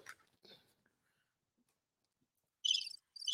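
A brief murmur of voice, then a quiet pause before loud, shrill cricket chirping kicks in as two rapid pulsing bursts near the end.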